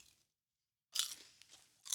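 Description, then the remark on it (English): Popcorn being crunched and chewed at the movies: after a short silence, a crisp, noisy crunch followed by softer munching and another sharp crunch at the end, with no talking. “We're eating popcorn because we're at the movies.”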